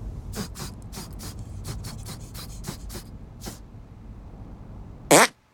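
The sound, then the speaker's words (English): A rapid, irregular string of short sputtering farts over a low rumble, followed after a pause by one loud, sharp final fart blast. No one speaks. “Make your fart detonate behind me.”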